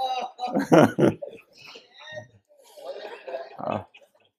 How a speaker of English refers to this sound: Okay, enough of the goats, but at least it wasn't devils.